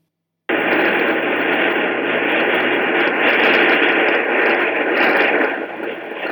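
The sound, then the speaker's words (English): A steady wash of static-like hiss from radio emissions of the planet Jupiter, loud and dense, starting abruptly and holding for several seconds with faint fluctuations, like a badly tuned AM radio picking up noise from space. “Today I'm going to tell you about the discovery of radio waves coming from Jupiter.”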